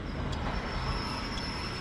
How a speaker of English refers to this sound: It's a late afternoon on a subway hurtling through Harlem. The train's not crowded.